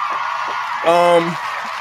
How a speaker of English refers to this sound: Where's the round of applause? There, we get the woos cracking.